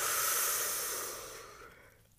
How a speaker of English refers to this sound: Exhale through your mouth.